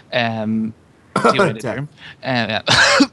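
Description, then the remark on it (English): A person coughs and clears their throat several times, with short strained vocal sounds between the loud, raspy bursts. “Damn, I'm coughing.”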